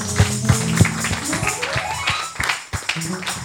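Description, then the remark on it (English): A church audience claps their hands in sharp, fairly rhythmic bursts that grow looser and more scattered, over a bed of voices and sustained tones. “Oh, you need to clap your hands, church.”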